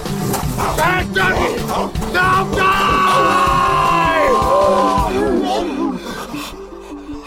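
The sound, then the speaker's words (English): A vicious dog growls and barks loudly, harsh rasping snarls with a long drawn-out howl in the middle, tapering off into quieter growls at the end. “The three-headed attack dog of hell.”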